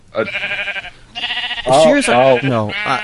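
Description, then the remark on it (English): A sheep bleats several times in a row, long wavering calls with a low, rough, deep-pitched voice, loud, the last ones growing stronger and more strained. “It's all deep and creepy compared to other sheep voices.”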